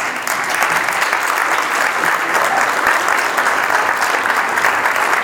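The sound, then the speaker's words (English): Sustained audience applause, a dense, steady wash of many hands clapping at an even loudness for several seconds, with no voices standing out above it. “Can we clap a little bit more for this fantastic day?”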